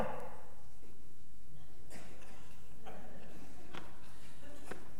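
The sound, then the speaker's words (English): Several knocks on a door, four sharp raps spaced about a second apart, fairly quiet over a low background hum. “I don't know about you, but when I go to the door, I don't just knock one time.”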